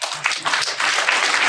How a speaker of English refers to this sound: Clap that up.